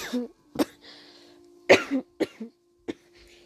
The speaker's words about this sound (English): Oh my god, I'm really sorry, I'm coughing so much, I really hate it.